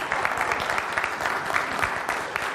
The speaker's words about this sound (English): So let's give her one big round of applause.